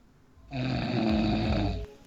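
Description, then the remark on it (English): A single loud, rasping snore lasting just over a second, with a buzzy, throaty rattle that starts abruptly and cuts off cleanly, with no talking. “Excuse me, I was snoring.”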